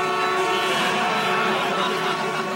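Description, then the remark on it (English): A loud, sustained horn blares steadily for a couple of seconds, its rich, brassy tone unbroken, with no one talking over it. “Honk if you hate Labor Day.”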